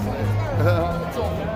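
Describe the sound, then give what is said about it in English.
A street protest crowd at the Freedom March of the Rolling Thunder protest in downtown Ottawa, Canada, mills and murmurs, many overlapping voices blending into a steady, fairly loud babble with a few raised shouts rising above the din. “Look at the crowd yourself.”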